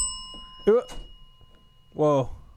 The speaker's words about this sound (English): Right when you hit the bell.